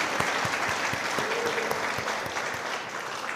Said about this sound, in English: We know what we have to do. We need claps. Let's clap it up for them one more time. Wow.